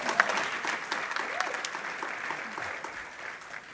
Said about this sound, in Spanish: Estoy muy contento y demos un aplauso a nuestros brothers.